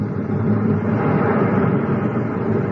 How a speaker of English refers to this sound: Hey, watch that geyser now. Here she comes. Sure thing. It's really boiling. Well, this ought to be a safe distance.